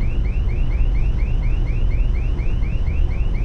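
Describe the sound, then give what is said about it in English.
An alarm blares with a rapid, repeating rising whoop, about four cycles per second, steady and loud over a low rumbling background, with no voices. “No one has ever set off the alarm before.”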